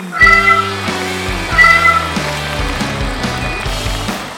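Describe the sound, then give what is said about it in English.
A string of meows from Kitty Karloff, the cat of anthropologist William Mummy, follows one another in quick succession, rising and falling in pitch like a melody. They are loud, with no talking. “Kitty steals pushpins.”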